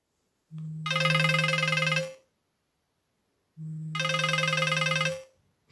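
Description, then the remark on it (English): A telephone rings twice, each ring a clear, buzzy, trilling burst about a second and a half long separated by a short pause of silence, before a phone call between a customer and a restaurant manager to book a table. No one is talking. “You will hear a phone conversation between a customer and the manager of the restaurant.”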